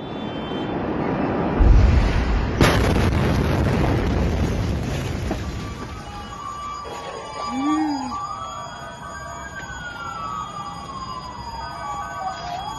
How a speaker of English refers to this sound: In 2020, a deadly explosion shook Beirut.